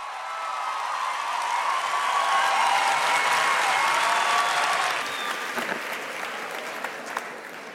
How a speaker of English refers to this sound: Adichie began, once the tremendous applause had died down, by recalling a significant episode in her childhood in Nigeria.